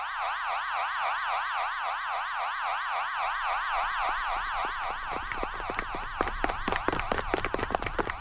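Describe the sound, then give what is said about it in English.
A camp's warning siren, signalling everyone to take shelter, wails continuously, its pitch rising and falling rapidly and evenly; toward the end some clattering, irregular noise joins underneath the steady, loud warble. “And we have a paging system and a siren, and they, you know, everybody will know it's a when siren it goes off.”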